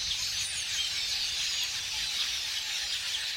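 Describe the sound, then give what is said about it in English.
A vast flock of a couple million red-billed quelea, swirling in unison in the air, chatters in a dense, continuous wash of high-pitched calls, so many voices blending into a steady, hissing roar with no single bird standing out. “But setting aside their taste for crops, the sight of a couple million red-billed quelea swirling in unison and creating ever-changing patterns in the air is one of nature's most amazing spectacles.”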